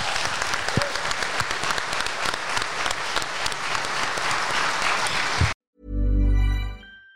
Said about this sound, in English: Everyone, give yourself another round of applause. Thank you for coming.